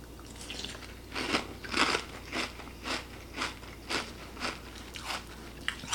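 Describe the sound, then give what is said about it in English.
Crisp crunching of someone chewing dry Frosted Flakes frosted corn flake cereal, about ten rhythmic bites spaced roughly half a second apart, with no talking. “Real crunchy. You get that corn flake taste.”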